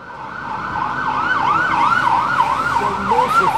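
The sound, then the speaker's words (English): A police car siren wails in quick rising-and-falling cycles, fairly loud, over a low rumble of street traffic in Chicago, with no one talking. “We attempted to record a walk and talk as we did this, but a couple of loud buses went past, and then a police car with a siren on, and that ruined it, so we just kept the end bit.”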